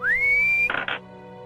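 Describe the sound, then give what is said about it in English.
A person whistles a single clear note that slides upward and holds, followed by two quick, breathy bursts, fairly loud with no talking. “He says, don't do it, and then he whistles.”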